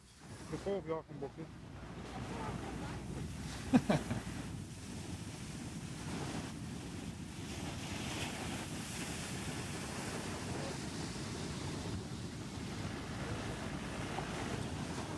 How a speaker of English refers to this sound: They definitely are running from this wave.